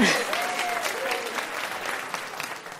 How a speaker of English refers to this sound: We'll clap for that. You can clap for that, yes.